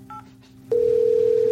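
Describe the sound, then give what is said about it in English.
A phone call being dialed and connected: a short keypad beep, then a loud, steady line tone that starts abruptly and holds to the end. No one speaks. “Just one second while I connect it for you.”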